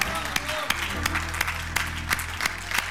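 An audience claps in steady unison during worship, sharp collective claps landing at an even beat over a dense wash of scattered hand claps and crowd murmur.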